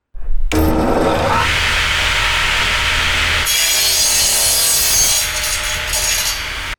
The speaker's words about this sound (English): The Velik chewed through the tree I was on. I looked down and saw it right below me. The tree was still standing, but the Velik had shredded the base, and it was chewing its way straight up the tree.